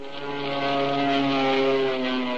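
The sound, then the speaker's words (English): A propeller airplane drones steadily in flight, its engine hum holding a constant pitch with stacked harmonic tones and a broad rushing wash, loud with no talking. “2 days later, we were soaring in the sky.”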